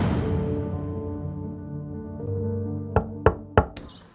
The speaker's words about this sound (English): Why the hell are you knocking on my door?